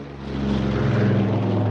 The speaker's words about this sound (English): Huh? Was that it? Last plane to Miami today, Johnny. Doc's cooked.